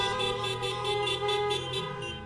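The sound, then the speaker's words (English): Several car horns blare together at Cross Point Baptist Church on a Sunday morning, a steady, overlapping chorus of honking, loud and sustained with slight pulsing, like a parking lot full of cars sounding off at once. “Honk if you're glad to be here.”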